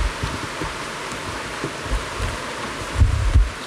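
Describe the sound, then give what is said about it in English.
Heavy rain pours down at a dojo in a steady, dense hiss that fills the whole clip, with a few low thuds and rumbles rising briefly near the end. No one speaks. “Started to give a bit of a pour here in the dojo.”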